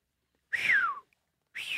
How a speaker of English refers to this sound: How do you do that whistle? Like where you're like, oh, wow.